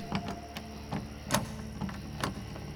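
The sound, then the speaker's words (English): A large lock on a stable door being picked: sharp metallic clicks and ticks come at uneven intervals over a steady low mechanical hum, with a few louder snaps standing out. No voices are heard. “Finally, the lock fell open with a quiet click.”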